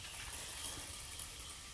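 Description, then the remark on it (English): A spray bottle mists water onto hair, a few quick spritzes blending into a soft, steady hiss with faint pump clicks, quiet, with no voices. “All right, one more spray.”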